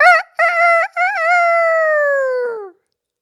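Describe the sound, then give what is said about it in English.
A rooster crows once, loud: a few clipped opening notes, then a long drawn-out call that slides downward before cutting off into silence. “And they get up early, the boy chicken, that rooster.”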